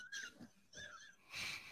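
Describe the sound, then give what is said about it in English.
A voice imitates a shark's snorting growl: two short, wheezy, raspy vocal tones followed by a louder, breathy snort-like burst, with no words spoken. “Oh, they had like a growl like lions or something.”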